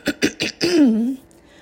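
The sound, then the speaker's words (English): Someone clears their throat: three quick, raspy bursts followed by a longer voiced 'hmm' that glides down in pitch, with no other talking. “Wow, I just felt like I was clearing my throat for something way more important than this podcast, because it was really giving for the people.”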